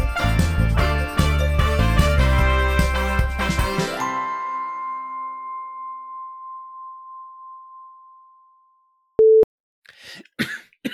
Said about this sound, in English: Sorry. Did not mean to cough into the mic.